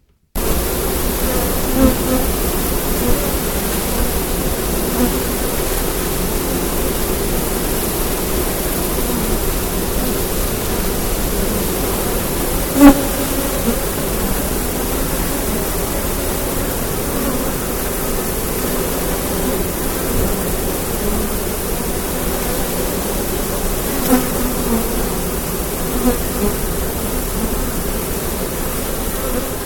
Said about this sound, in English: Well, that's our bees. That's the bees. And it sounds like general bee business, like general coming and going out of the hive. Well, actually, it was a really warm afternoon, and I stuck the microphone right next to the entrance.